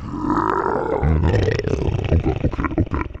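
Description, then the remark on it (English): A person makes a deep, guttural demonic growl, a sustained rough roar that breaks into choppy, rasping bursts toward the end, loud and without any words. “That's enough growling for you, ….”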